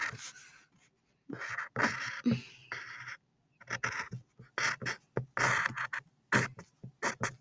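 Pen strokes scratching across paper in short, uneven bursts, some quick and some drawn out, with brief pauses between them, as a My Hero Academia character's bangs are traced onto a piece of paper; a soft, dry rasping sound with no voices.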